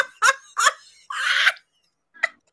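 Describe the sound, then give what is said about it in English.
A young son, locked out, yelling from behind a locked door: two short, sharp shouts, then a longer strained scream, a pause, and one final brief high cry. No other voices. “Is he yelling at the door? Yeah, I locked him out.”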